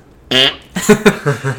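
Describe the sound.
A loud hand fart: one drawn-out buzzy squelch, then a quick string of shorter sputtering bursts, with no talking.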